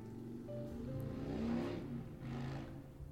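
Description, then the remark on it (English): A loud Harley-Davidson motorcycle engine rumbles and revs with deep, throaty roars outside, swelling as it passes and then easing off, with no talking. “I love Harley Davidsons, don't you all? Yeah, just FYI, their traffic happens quite a bit, so get used to it.”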